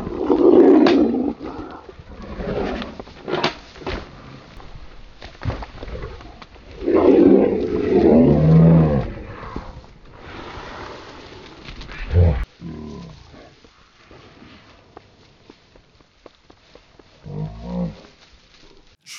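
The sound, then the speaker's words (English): A female dog named Stitch fights a warthog, latched onto it: loud bursts of snarling, growling and grunting come in waves, strongest early and midway, then fade to scuffling noises and a few sharp squeals. “she was latched onto that warthog and you were going to shoot it.”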